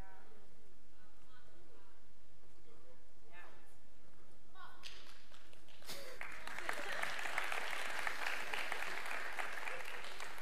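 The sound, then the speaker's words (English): A quiet murmur of voices gives way to an audience's brief, polite pity clap, a steady patter of hand claps that fills the last few seconds and then simply keeps going without building. “I love that pity clap.”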